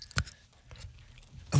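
A person chews soft dog-treat bacon strips, something moist and pliable, with a sharp bite near the start and a louder wet smack at the end, no talking.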